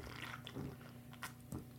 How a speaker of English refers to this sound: All right. Here we go. Let me take a sip here.